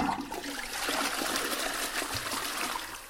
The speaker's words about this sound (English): I'm gonna edit in a flush sound.